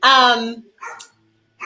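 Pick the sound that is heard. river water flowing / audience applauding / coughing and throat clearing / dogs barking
dogs barking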